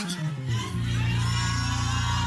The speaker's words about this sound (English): Somebody shout, I am blessed in God. Shout it louder from your guts and from your belly.